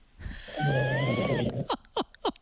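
A loud, rasping snore from a caller from Boston who fell asleep while on hold drags on for about a second, buzzing and rattling, followed by three short snorting puffs in quick succession, heard over a phone line with no talking.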